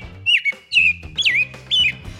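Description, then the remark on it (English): Birds chirping and singing: four bright, whistled phrases in quick succession, each a short rising-and-falling trill, clear over a faint steady background, with no talking. “It's that time of year when our feathered friends start returning home.”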